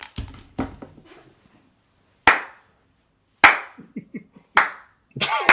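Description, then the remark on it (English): A slow clap given for a weekend of football games: sharp, loud single hand claps spaced about a second apart, each ringing out briefly, with a couple of quicker claps at the start and faint rustling between. “Bruh, you don't sit your behind down with that slow clap.”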